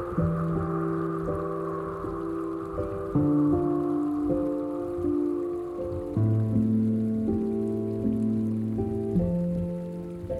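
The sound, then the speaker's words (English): Soft, steady rain patters gently beneath slow, sustained musical chords that shift every few seconds; a calm, continuous wash of drops with no voices. “The delicate rain begins to fall, refreshing you with its touch.”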